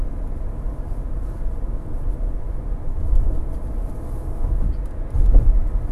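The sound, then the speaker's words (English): Steady low rumble of a car cruising near the open road in light traffic, with continuous engine and tyre noise that swells slightly a few times. No voices, just constant vehicle drone. “And now, the open road. Or at least close to the open road, because two cars in front of me that I swear is another landscaper.”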